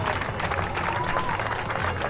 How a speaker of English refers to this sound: You can hear the crowd.